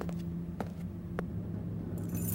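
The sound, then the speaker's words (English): Car keys on a fob clink a few times in sharp, separate taps as they are retrieved from above a car's wheel arch, then give a brief higher jingle at the end, all fairly quiet over a steady low hum. “Right, I've got the keys. All right. It's a fob.”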